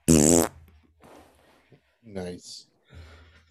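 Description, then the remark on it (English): A loud fart, made by a person sitting with their backside on the microphone, blasts directly into it for about half a second, then fades into quieter shuffling and brief voices or laughter. “I put my ass on the microphone and I farted.”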